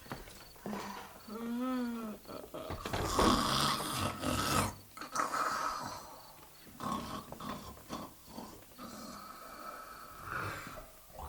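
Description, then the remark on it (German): Loud, rasping snoring, with several drawn-out snorts and rumbling breaths following one another, some rough and gurgling, almost like an animal's grunt. “schnarcht so laut, dass es einem die Schuhe auszieht.”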